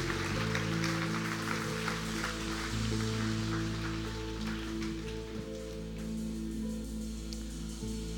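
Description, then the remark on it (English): A church audience at a morning service claps steadily for several seconds for people who have just made a decision for God, a dense, even wash of applause while sustained keyboard or organ chords hold underneath. “Come on, church, let's give them a big round of applause and a big God bless you.”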